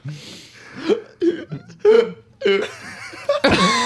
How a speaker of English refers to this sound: It's a sound someone gasping for air.